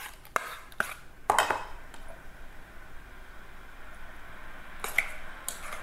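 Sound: water boiling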